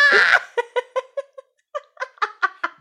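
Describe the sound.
A voice imitates a frightened cat: a sharp, breathy hiss bursts out first, then a string of short, whiny yowling yelps follows in an uneven, stuttering rhythm, fairly loud.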